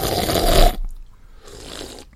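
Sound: slurping a drink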